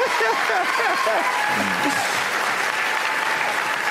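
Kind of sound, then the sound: crowd, clapping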